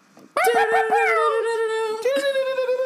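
A loud, blaring hip hop air horn blast, opening with rapid stuttering pulses and holding a steady, brassy tone, then hitting again in a second burst near the end.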